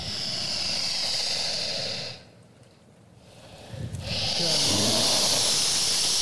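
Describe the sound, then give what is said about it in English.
A big dog named Elvis snorts and sniffs in loud, breathy, hissing bursts, with a short quiet pause in the middle before the rough, airy huffing resumes. No one speaks. “Oh, there he is. How you doing, big dog?”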